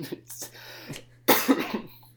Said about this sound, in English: Objection! Coughing, Your Honor.